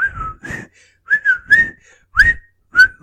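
A person whistles a short, bouncy tune up close, a string of clear, pitch-gliding notes with brief gaps between phrases and no talking.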